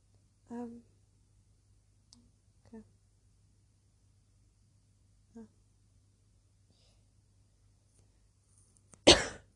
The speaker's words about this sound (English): Cough, cough, coronavirus. No, joking.